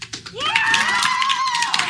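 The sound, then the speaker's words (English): An audience bursts into cheering for the answer that Harry will die, with high whoops and shrieks rising above a steady roar of many voices, sustained loudly for about two seconds after a few quick claps or taps at the start. “You're cheering for death?”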